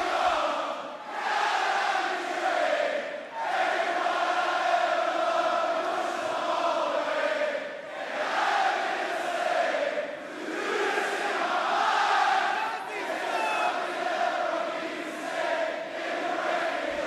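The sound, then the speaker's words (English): A large crowd sings along loudly and continuously to a performer's entrance song, voices swelling and dipping in a steady rhythm, with cheering mixed into the massed chant throughout. “So he's coming out for those who are just listening, and this is the reaction from the crowd.”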